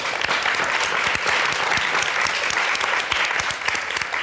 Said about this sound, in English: Well, before we wrap up tonight, I'd like to thank the California Wellness Foundation for making tonight possible. We're so grateful for them and so excited about our partnership. So a round of applause for them, please.